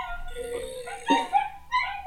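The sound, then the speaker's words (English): Prison alarms that sound like dogs howling together in long, wavering, overlapping cries mixed with short yips and whimpers. The chorus swells in bursts over about two seconds, with no talking. “This is actually what the prison alarms sound like. Yeah. Yeah, they sound like howling dogs.”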